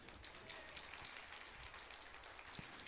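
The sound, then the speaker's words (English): Sustained applause from a church audience during a sermon about freedom in Jesus, a dense, steady crackle of many hands clapping at once, holding evenly throughout with no voices over it. “Yes, please clap.”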